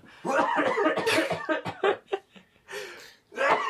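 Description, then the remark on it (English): Loud coughing in a string of harsh, rough bursts, a long fit followed by several shorter coughs with brief pauses between them, and no talking. “I'm just going to go off in the corner and cough loudly.”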